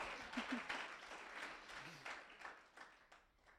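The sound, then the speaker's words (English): An audience applauds, many hands clapping in a dense, steady patter that holds for several seconds before thinning out, with a few faint voices murmuring underneath. “I think God deserves a clap for that, guys.”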